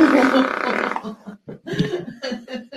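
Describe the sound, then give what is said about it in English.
A woman lets out a loud, drawn-out fart for about a second during a chiropractic adjustment, followed by scattered bursts of laughter and brief vocal reactions. “what happens when you hold it in for too long, ladies. You gotta go to the chiropractor. Just fart around your man.”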